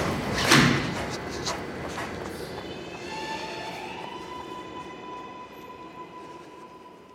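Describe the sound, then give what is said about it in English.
A subway train rumbles steadily, with a sharp clunk early on like a sliding door shutting, followed by a rising electric whine as the train pulls away. No one speaks. “I got off the train and was running.”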